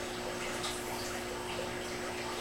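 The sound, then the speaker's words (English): Steady, continuous rush of tea pouring into a tank, starting with 9 gallons of tea, a dense splashing hiss with faint bubbling texture that holds even throughout, with no voices. “So we're gonna start out with 9 gallons of tea.”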